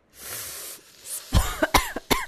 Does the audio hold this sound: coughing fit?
yes